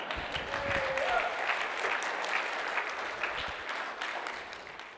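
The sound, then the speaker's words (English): Sustained applause from an audience, a dense steady crackle of many hands clapping at an even, moderate loudness for several seconds, with a faint murmur of voices beneath it. “clap. It's okay. You can.”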